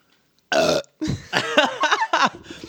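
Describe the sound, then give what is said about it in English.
A loud burp after guzzling Diet Pepsi, starting with a short sharp belch, then a longer, croaky, drawn-out eruption with uneven gurgling pulses, with no talking. “Drink every time … burps”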